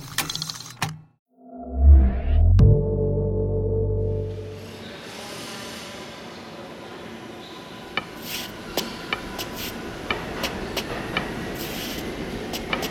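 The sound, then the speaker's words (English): A subway train pulls away, its deep rumble and rising motor whine swelling loudly before receding into a softer, hissing roll dotted with scattered metallic clicks and rattles. “Stop the train!”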